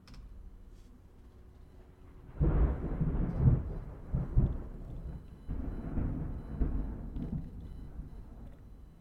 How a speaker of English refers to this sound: I want to ask you all, is that thunder noise like cutting off for you toward the end? Instead of falling off really nicely, it falls off mostly and then cuts right off. Let me know if that's wonky on your end too